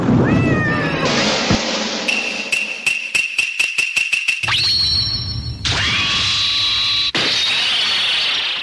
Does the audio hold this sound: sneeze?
no